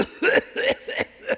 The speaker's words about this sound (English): It's like a cough. You can't hide it. Ever tried to hide a cough? And then all of a sudden,